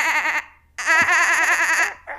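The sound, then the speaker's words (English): A person imitates a dolphin with high, warbling squeaks that trill rapidly. Three loud bursts: a short one, a longer sustained chatter, and a brief final squeal. “Can anybody make a dolphin noise?”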